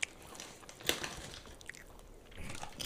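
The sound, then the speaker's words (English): Crunchy chewing of a snack, with a sharp bite near the start and irregular mouth sounds continuing throughout, fairly quiet and with no one talking. “Y'all gonna hear me munching on this the whole episode.”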